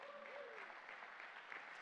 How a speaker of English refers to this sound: If you believe that today, give him a hand clap.